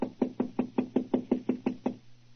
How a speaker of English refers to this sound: This is room 212, all right, but there's no answer. I'll knock again.